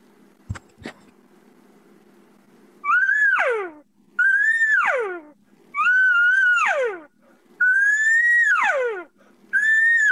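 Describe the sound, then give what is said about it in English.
Someone imitates a lost cow's bawl with five loud, drawn-out calls, each swelling then sliding down in pitch, evenly spaced, after a couple of faint clicks at the start. “Yeah, and the reason I was going off with those sounds there, Jason Schultz asked about a lost cow.”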